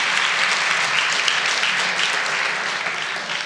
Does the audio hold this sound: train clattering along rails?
no